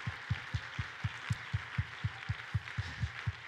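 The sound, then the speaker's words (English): An audience claps in steady unison to thank the Lord during a church service, about four claps a second, a bright crowd wash riding over a regular low thumping beat, with no voices standing out. “God, let's clap our hands and thank the Lord again together.”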